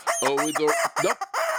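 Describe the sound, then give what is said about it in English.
A rubber chicken squawks loudly, a quick run of strained, honking squeals with a few choppy breaks, heard alone with no talking. “But what would I know? I'm just a rubber chicken.”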